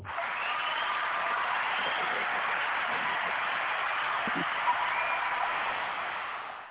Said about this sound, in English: They clapped a long time for you